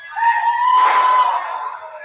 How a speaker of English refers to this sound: Capacity crowd here at the Wrestle Center.